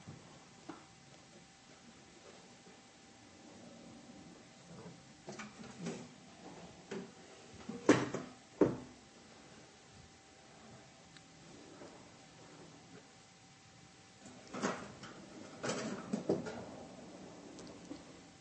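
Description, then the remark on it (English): A door is worked open and held open, with a few sharp clunks and rattles around the middle and another cluster of knocks and creaks near the end, over a quiet background with no talking. “I'm going to be embarrassed if I can't hold this door open, brothers.”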